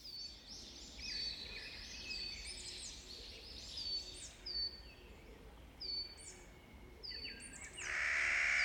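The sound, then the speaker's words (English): A Clark's nutcracker, a bird of the corvid family, calls repeatedly in short, grating bursts over a low outdoor rumble, several overlapping, ending with a louder, sustained harsh call. “The sound of a Clark's nutcracker, a bird in the corvid family, related to jays, crows, and ravens, commonly seen in the mountainous regions of the American West.”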